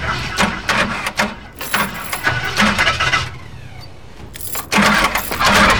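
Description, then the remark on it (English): A car engine cranks with a rapid, rhythmic churning for several seconds as the key is turned in the ignition, falls quiet briefly, then cranks loudly again. No voices. “Brad puts the keys into the ignition and turns the key.”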